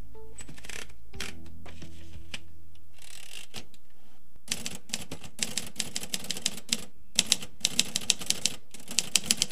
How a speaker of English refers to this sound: That's the sound of a 1950s-era Royal typewriter. For a good chunk of the 19th century and most of the 20th century, this was how we wrote a book, or a letter, or just took notes.